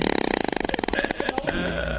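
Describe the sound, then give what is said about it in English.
An opossum makes a rapid, rattling series of guttural clicks, about twenty-five pulses over a second and a half, fairly loud, trailing off into a brief rough grunt. “It was a trick. It was an opossum.”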